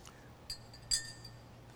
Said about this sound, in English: When I place this spoon at a glass of water that was only two-thirds full, it appears that the spoon is enlarged, that it's bent or it's broken.